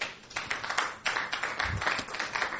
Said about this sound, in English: I want to congratulate the New York Times for their brilliance in capitalizing the B in black. Y'all give them applause.